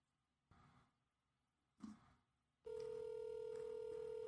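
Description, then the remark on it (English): A couple of soft taps, then a loud, steady phone ringtone starts and holds to the end as a phone call to a man's wife rings out unanswered, with no voices. “She may not answer. My wife is the only person I know that always has her phone on her yet never answers her phone.”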